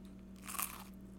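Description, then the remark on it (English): A single crisp crunch as someone bites into a fried potato pancake made from leftover mashed potatoes with bacon and shredded cheddar cheese, a brief bright burst rising and fading over steady low background hum, with no talking. “Oh, well, the crunch is awesome.”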